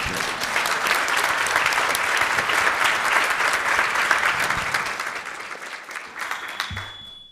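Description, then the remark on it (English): An audience at a City Club of Cleveland forum claps steadily in a dense, sustained wave of applause that holds strong for several seconds before gradually thinning out and fading. “Please applaud.”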